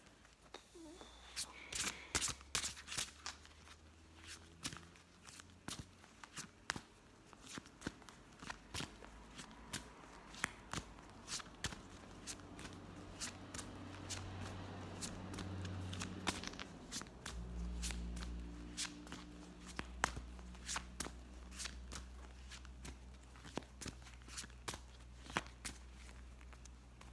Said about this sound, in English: All right. Put these cards away and begin shuffling.